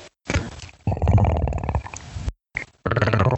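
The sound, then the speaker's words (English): A person imitates a cat's growl with voice, a low, rough, rumbling sound in several bursts with short pauses between, fairly loud and with no other talking. “You are reincarnated from a cat.”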